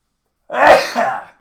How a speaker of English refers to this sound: Oh, I fucking sneezed. That was a big one. My wife would yell at me if she heard that.